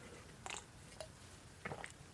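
Quiet sips from a 24-ounce can of alcoholic tea drink: three short wet slurping sounds spaced about half a second apart, with soft mouth noises and no talking.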